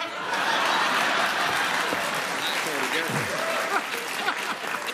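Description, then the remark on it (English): A crowd applauds loudly and steadily for the whole stretch after a line in a political speech, a dense wash of clapping with a few voices and cheers rising through it. “Yeah, it's a nice applause line, but they never say what exactly it is we should do.”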